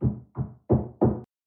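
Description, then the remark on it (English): Four heavy, booming bangs by police officers on a front door, loud, landing in two quick pairs with a short pause between them and no voices. “It took me a few seconds to realize that a noise was coming from the front door. A loud banging followed by a man's voice.”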